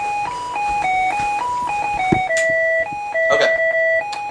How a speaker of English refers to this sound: That's some snappy music. Everybody take a moment for this music.